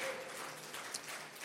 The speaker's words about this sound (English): Come on, Jesus is coming. Come on, clap your hands. Come on, give the Lord a shout of praise.